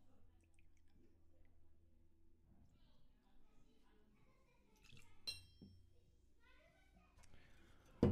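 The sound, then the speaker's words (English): Two ounces of Famous Grouse Smoky Black scotch whisky are poured into a glass for a highball cocktail, with a soft trickle, a couple of sharp glass clinks and a louder knock at the end, over a low background hum. “I'll be pouring 2 ounces of the scotch.”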